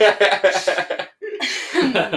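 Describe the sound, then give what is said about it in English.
A burst of rhythmic chuckling, then after a short pause a rough, forced-sounding cough, fairly loud, that trails off into more breathy laughter. “That was the best fake cough I've ever heard.”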